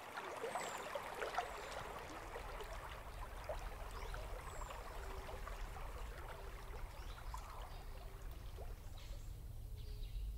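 Water trickles and splashes steadily over rocks at the base of a waterfall, where it seeps into porous limestone, in a continuous, even wash of sound, with a few faint high chirps of birds in the background and no voices.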